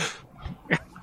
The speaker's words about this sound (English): There's a lot of like ambient dog barking noise in the background. So apparently, my gate's doing something because I don't think anyone heard that.